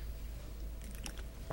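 A quiet sip of water: a few soft, wet mouth clicks and a brief slurp over a low steady hum, with no talking.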